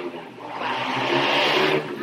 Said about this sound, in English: Some of these motorbikes are so loud.